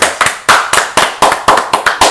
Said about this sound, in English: Can we give him a round of applause for pissing niggas off?